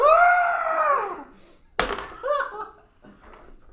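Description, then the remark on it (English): A loud, drawn-out scream with a wavering, gurgling quality, followed by a sharp thud and a few shorter strained vocal bursts trailing off. “I'm just going to scream.”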